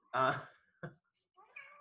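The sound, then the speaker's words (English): A person mimics a cat with a drawn-out meow, then a quick clipped one, followed by a higher, questioning meow after a short pause, all fairly loud. “Meow. Meow? Okay.”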